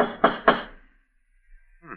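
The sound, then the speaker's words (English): Two heavy, sharp raps of a fancy door knocker on a door, loud in quick succession, followed by a brief ringing decay and silence. “Funny they'd have a fancy door knocker like this way up here.”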